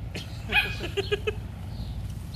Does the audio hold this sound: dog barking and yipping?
yes